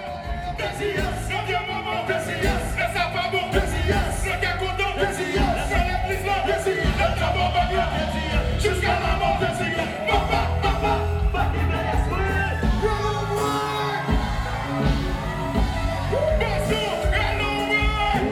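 A concert crowd in an event hall cheers loudly and without a break as a performer bounds up the back of the stage and jumps into his verse, a dense roar with yells and whoops rising over it and never dropping off.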